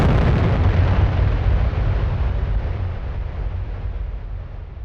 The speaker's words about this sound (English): Our story starts there, on the 10th of January, 1960, with a 10-ton dynamite explosion.